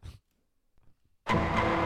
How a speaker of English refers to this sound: That's a fart.